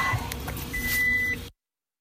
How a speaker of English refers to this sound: So we are officially in the car.